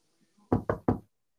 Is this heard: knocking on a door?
yes